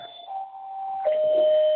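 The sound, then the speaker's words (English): A doorbell rings with two sustained chime tones, the first note holding for about a second before a slightly lower second note rings out and lingers. No one speaks over it. “Somebody's always at the door when we're on a deep topic, right?”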